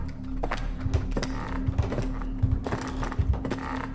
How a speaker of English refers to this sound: I didn't know how long I'd been followed, lost as I was inside my own head, but now that I could hear the footsteps, my unmedicated paranoia filled my head. As the sound approached me from an adjacent hallway, a narrow length of wood rot and mold